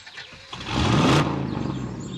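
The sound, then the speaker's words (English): A car engine turns over and catches, then revs up with a rising pitch as the vehicle pulls away, its steady drone lingering. No one speaks. “Okay, I'll come back for you after I fill the car with these dogs you're allergic to.”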